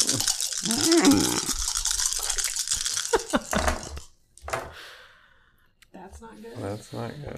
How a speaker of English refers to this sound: So let's roll these dice.